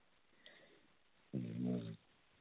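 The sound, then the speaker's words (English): A single loud, throaty snore lasting under a second, heard over a muffled telephone line, with faint line hiss before and after and no talking. “I think there was somebody was snoring.”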